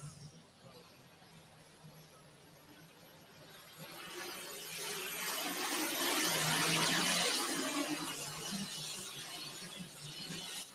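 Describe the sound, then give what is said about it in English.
A diesel Allis-Chalmers D21 tractor, the Punkin Express, pulling to open its class at a tractor pull, its engine building from a steady low rumble into a loud, roaring, rattling strain that peaks midway and then eases slightly. “Here's a diesel burning Alice to get us started.”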